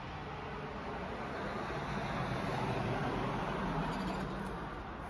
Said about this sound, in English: I don't know if you saw, but that truck just had 3, like, 50-inch TVs on the trailer of it.